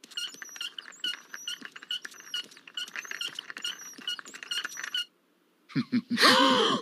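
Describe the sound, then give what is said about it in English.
Rapid, high-pitched squeaking repeats in a steady rhythm like turning wheels for about five seconds, then after a brief silence a louder, harsher squeal bursts out. “Oh, those wheels are squeaking a bit.”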